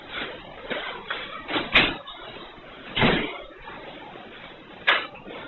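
A school door is pulled open by a gunman entering the school at 11:33 a.m., with a series of rattling clunks and a few sharper metallic thumps, over a faint background hum, with no one talking.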